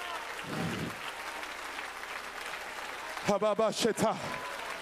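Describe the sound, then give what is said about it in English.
A church audience claps steadily during a sermon as the preacher calls for clapping, in a dense, crowd-wide wash of applause, and near the end a loud voice shouts over the clapping. “Oh, somebody clap right now.”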